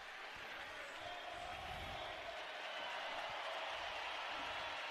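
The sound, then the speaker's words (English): A large stadium crowd at a soccer match applauds steadily as Jefferson Savarino, scorer of the third goal, is substituted off for Chang; a dense, hissing wash of clapping and murmuring voices holds at an even level for about five seconds with no break. “Savarino getting a nice hand from the crowd.”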